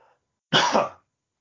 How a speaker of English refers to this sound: Excuse me, I'm about to cough.